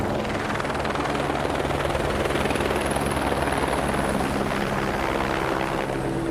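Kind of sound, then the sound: vehicle, helicopter hovering overhead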